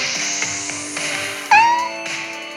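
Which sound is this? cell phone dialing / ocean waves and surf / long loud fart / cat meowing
cat meowing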